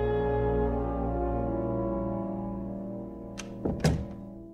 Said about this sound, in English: I think there was some faith in the audience as well to understand that even though this was the simple act of closing the door, it had great significance to these characters, and that's what matters.